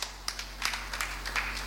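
An audience claps briefly, a soft, scattered patter of many hands with irregular sharp claps poking through, fairly quiet and without any talking over it.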